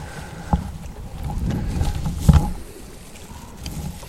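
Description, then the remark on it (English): A boat motors past close by on the water, its low engine rumble swelling through the middle and easing off, with a couple of sharp knocks and splashes along the way. No one speaks. “we come into this boat, boys, let's have you strip them in.”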